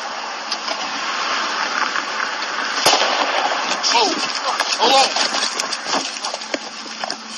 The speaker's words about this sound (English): Hey, guess what that was? That was Cincinnati police telling someone to get out of a car during a normal traffic stop. And guess what? Someone drives by and starts firing at police.